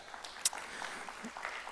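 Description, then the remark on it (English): An audience applauds a 10-year wedding anniversary, a dense patter of overlapping claps that keeps up steadily throughout, with one sharp louder clap standing out near the start. No one speaks over it. “It's always awkward, like, you clap for, like, but it is a big accomplishment.”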